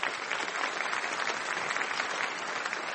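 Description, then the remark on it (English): An audience at a debate series event applauds steadily for the benefactor of the series, a dense, even wash of many hands clapping that holds at a constant loudness for the whole stretch with no voices over it. “And I would just like to invite one more round of applause for the benefactor of this series,”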